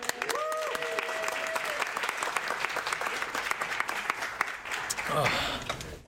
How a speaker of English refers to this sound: Clap.